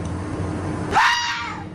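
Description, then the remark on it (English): A fox gives a single harsh, high-pitched scream that starts abruptly and trails off over about half a second, following a stretch of low background rumble. “That's what I heard. That's a fox.”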